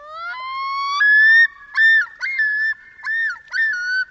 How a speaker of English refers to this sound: That's the haunting yodel of a male common loon, a sound that echoes across northern lakes where loons nest in summer. With his neck outstretched, the male waves his head from side to side, sending his eerie calls across forests and open water.